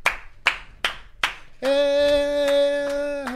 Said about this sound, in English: I'm going to give it a clap. Why are we clapping?